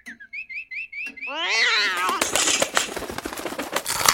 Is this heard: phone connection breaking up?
no